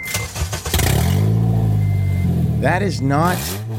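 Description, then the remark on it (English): A Honda Element's engine cranks and starts, then settles into a loud, raw, unmuffled roar because its catalytic converter has been stolen, with a couple of sharp revs rising and falling near the end. “Actually, that's how a car sounds without its catalytic converter.”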